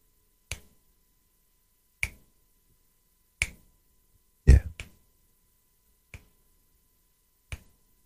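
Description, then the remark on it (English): Crisp finger snaps by a singer about to perform a song sound alone at a slow, steady beat, about seven in all. Near the middle comes a louder pair in quick succession, and the final snaps are slightly softer. “I need to snap my fingers at least.”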